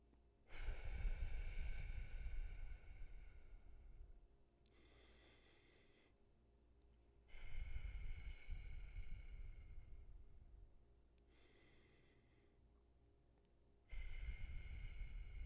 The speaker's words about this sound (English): And when you breathe out, you breathe out through pursed lips. So that's where the name straw breathing comes from. It's as if you were breathing through a straw. So it goes something like this.